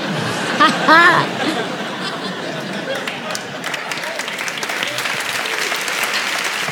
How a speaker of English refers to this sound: Every time people applaud, I'm always going, no, no, no, hold on.